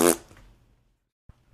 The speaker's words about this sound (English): That's how I go into space. I fart real hard. It makes you go forward. Yes. That's called gas propulsion.